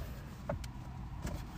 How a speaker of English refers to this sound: Again, sorry for the interference. I know these cars are kind of loud.